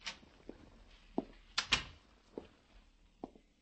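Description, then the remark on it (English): An office door at the offices of the magazine Satire being opened: a series of soft clicks and knocks from the handle and latch, with a louder clunk midway as it swings, with no talking. “They opened doors for me and supplied long cigarettes and short coffees until the editor could see me.”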